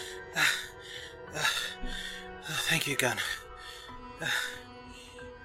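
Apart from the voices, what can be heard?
heavy breathing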